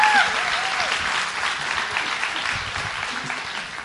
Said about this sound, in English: I am so glad you guys clapped because you don't know what you clap for.